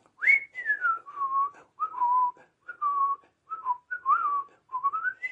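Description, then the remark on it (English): Someone whistles a short, wavering tune imitating the whistling of the cartoon character Jim Dear as he comes in from work, about eight gliding phrases separated by brief pauses, clear and fairly loud with no talking. “But Jim Deer, he comes in from work or something, and he's whistling.”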